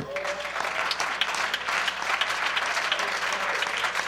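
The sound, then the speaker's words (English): A large audience at a worship service claps in sustained, dense applause to Jesus, many hands blending into a steady wash of sound for several seconds without a break. “And we clap our hands to him.”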